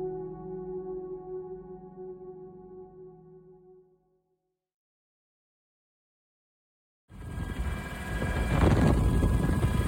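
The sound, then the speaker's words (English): A steady, low droning helicopter rotor hum with a buzzing tone fades away, then after a few seconds of silence a loud, rushing wash of noise swells in. No one speaks. “I mean, the helicopter of all supplies, right?”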